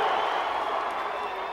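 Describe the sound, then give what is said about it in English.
A large WWF wrestling crowd roars and cheers for the New Age Outlaws in a steady, loud wash of noise with no breaks, sustained from start to finish. “Now then, let's see if we can't make a little noise up in this bitch!”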